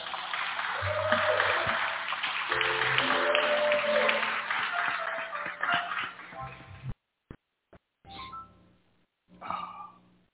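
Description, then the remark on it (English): An audience claps for the musicians in a steady, dense round of applause for about seven seconds, with faint sustained tones underneath, then it cuts off abruptly and a voice starts speaking. “Please give a warm round of applause to these amazing musicians.”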